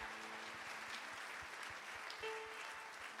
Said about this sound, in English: Church, could we give a round of applause for all those who made that decision today?